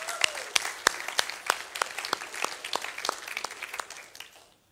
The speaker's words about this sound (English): I just want to affirm the worship team for leading us out this morning. So we're just going to give them a round of applause.